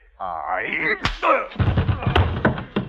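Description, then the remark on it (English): A single sharp thwack of a knock on the head lands after a strained vocal cry, followed by a grunt and a stretch of scuffling, rustling movement. “That be your pay, a knock about the head.”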